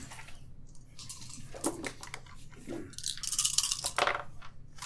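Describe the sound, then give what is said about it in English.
Dice rattle and clatter across a table in a quick burst of hard clicks as several players roll, growing busier toward the end, moderately loud over a faint hum. “Whoa, actually rolled well. You guys are actually rolling well.”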